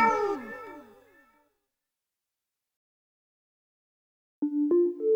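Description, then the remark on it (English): A cat gives a loud, drawn-out meow that slides downward in pitch and trails off, followed by a few seconds of silence before a new tonal sound starts. “Meow. Oh, my God. Meow. Meow.”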